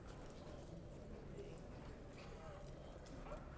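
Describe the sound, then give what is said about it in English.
Someone playing a horse imitates galloping horse hooves with a steady, rapid clip-clop rhythm, over a constant wash of background noise and faint voices. “Once I have these on, so do I gallop?”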